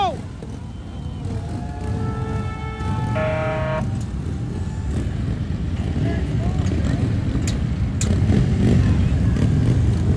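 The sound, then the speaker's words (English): Ten Harley-Davidson motorcycles in a parade motorcade rumble and rev together in a steady, loud low roar that continues throughout, with a brief tonal blare near the start and voices mixed in the background. “Here comes the motorcade right now. Ten motorcycles ready to go. Beautiful Harleys.”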